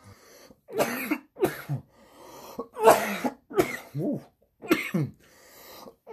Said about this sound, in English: Ooh. I'm over here coughing up a lung. Ooh. I shouldn't have done that. Oh shit. Oof. I'm over here still coughing. Remember, y'all, it's not the Rona, it's the weed.